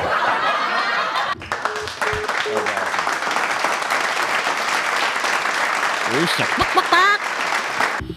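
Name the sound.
crowd applause sound effect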